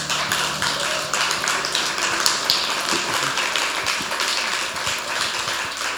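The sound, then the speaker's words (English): A crowd claps together steadily for several seconds at the speaker's call, a dense, continuous patter of many hands at an even loudness, with no voices rising above it. “Come on, let's clap our hands.”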